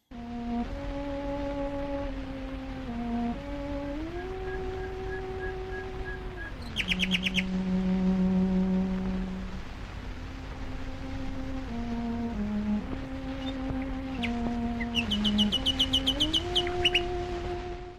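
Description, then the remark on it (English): A nightingale sings in two bright, rapid bursts of trills and chirps, heard clearly over slow, sustained cello tones that play throughout, in a modern musical ode to a nightingale. “We'll hear a modern ode to a nightingale.”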